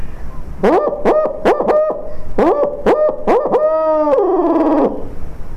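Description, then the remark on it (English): A person imitates a barred owl's hooting call: a loud run of rhythmic hoots ending in a long, wavering, descending hoot, with no talking. “If I don't hear anything, then I'm gonna start talking to the owls.”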